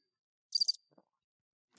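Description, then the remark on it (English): A single quick burst of high, trilling cricket chirps, a few rapid pulses lasting about a quarter second, then near silence with a faint click or two and no talking. “Those crickets come through better.”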